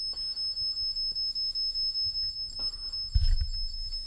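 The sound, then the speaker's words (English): A K2 EMF meter, one of several devices on a bed, beeps nonstop in a fast, even stream of high-pitched pulses, with a low thump partway through and no talking. “If you're the older gentleman, would you make the K2, the thing you're touching, can you make that stop beeping?”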